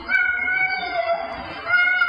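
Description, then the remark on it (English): A cat gives one long, drawn-out meow, a sustained wavering cry that rises and falls in pitch, fairly loud with no talking over it. “Mom, is that what the cat is saying?”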